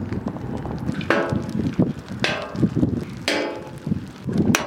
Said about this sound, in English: The golf ball size hail, once it impacted the trash can lid, it left a little sting in your hand. It's got some good velocity.